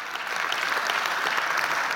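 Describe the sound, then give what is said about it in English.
A church audience applauds Jesus together, a dense, steady wash of many hands clapping evenly with no pauses and no voices standing out. “I want us just to applaud Jesus for the work he has already done on our behalf.”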